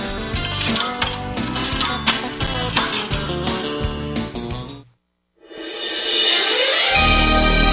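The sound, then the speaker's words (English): A rapid cascade of metallic coins clattering and jingling into a machine, dense and loud for several seconds, then a brief silence before a bright, sustained shimmering jingle swells in. “Gambling studio, put the coins in.”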